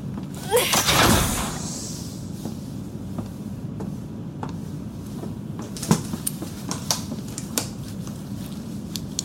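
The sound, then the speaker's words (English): A door to the medical bay slides open via its manual door controls with a brief mechanical whoosh near the start, then a steady low hum carries on, dotted with scattered light clicks and taps. “Please use the manual door controls.”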